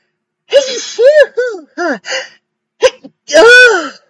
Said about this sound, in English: Excuse me. Don't make fun of my sneezes.